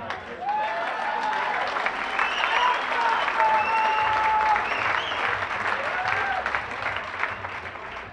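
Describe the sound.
An audience applauds heartily about the reading of the book, a dense, sustained wash of many hands with a few whoops and voices rising over it, staying loud throughout before beginning to thin toward the end.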